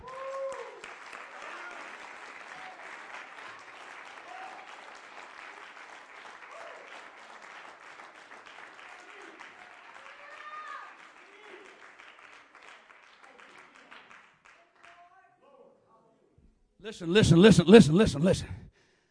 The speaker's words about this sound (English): Give him another clap offering.